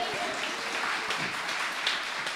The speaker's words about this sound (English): Rising to raucous applause is Paul Kavanaugh.